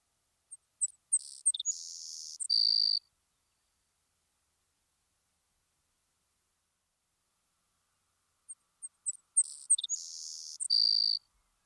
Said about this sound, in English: In the meadows and low wetlands, the savanna sparrow is met with and may be known by its fine insect-like song.